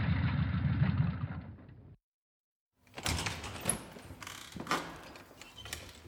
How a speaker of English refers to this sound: I can hear Queenie's motorbike pulling up outside of the club